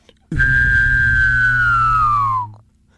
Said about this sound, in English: I can hum and whistle at the same time. Let's hear it.